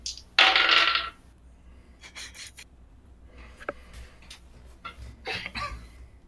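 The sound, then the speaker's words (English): A loud burst of dice, rolled for a strength contest skill check, clattering onto a hard surface, followed by scattered lighter clicks and taps as pieces skitter and settle across the table, with a few more rattles near the end. “Oh god, my dice went everywhere.”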